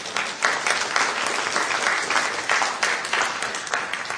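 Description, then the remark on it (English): Sustained applause from a church audience welcoming people after a prayer, a dense crackle of many hands clapping at a steady, fairly loud level throughout, with no voices cutting through. “And can we welcome them with a round of applause?”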